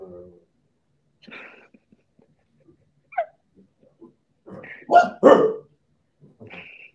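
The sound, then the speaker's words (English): A playing female dog gives two loud, sharp barks in quick succession at a person taking a fight stance, preceded and followed by quieter scattered noises and a short yelp-like sound. “Like, every time I throw it, like, my fight stance, she'll bark at me.”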